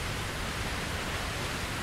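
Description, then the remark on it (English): A babbling brook in the woods flows in a steady, even wash of hissing, rushing water, holding a constant level throughout with no voices or other sounds. “And the water, and the sound of the water begins to increase, and the volume of the water increases, and we are drawn to it.”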